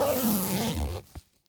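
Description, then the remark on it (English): Busy rummaging through a pouch in search of a pencil: a dense second of rustling and jostling clatter that ends with a single soft thump, then quiet. “Hang on, let me check my pouch.”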